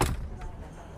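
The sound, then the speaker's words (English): A door shuts with a single dull thud at the very start, followed by faint room noise and a low background murmur. “Baby, can you shut the door?”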